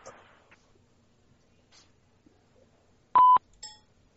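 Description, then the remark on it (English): A Skype call dialing tone: one loud, steady electronic beep lasting a fraction of a second, then a shorter, fainter tone, otherwise quiet with a few soft rustles. “Skype again. Uh-huh. Yep. Why is it not ringing?”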